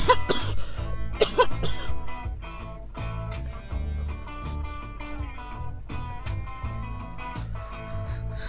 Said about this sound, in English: There's like nothing. There's no recording, just coughs.